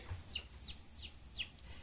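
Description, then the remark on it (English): A person imitates a bird call, giving a quick series of four or five short, high, chirping whistles at an uneven rhythm over a low background rumble, fairly quiet with no talking. “I think there's a bird in here.”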